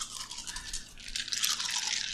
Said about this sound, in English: Lots of dice rolling ensues.